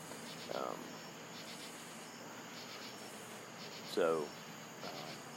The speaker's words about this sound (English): You can hear the crickets. It's nice out.